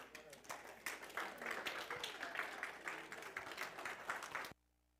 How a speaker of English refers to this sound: Finished, I'd be okay with that that type of applause.